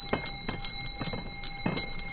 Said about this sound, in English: Yep, it's the season when these ice cream cart bells ring out in Chicago sidewalks, parks, and beaches.